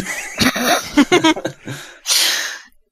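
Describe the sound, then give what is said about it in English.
A voice imitates coughing up blood: a run of strained, gurgling vocal sputters, then a short pause and one harsh, breathy hack, fairly loud. “And then I cough up blood.”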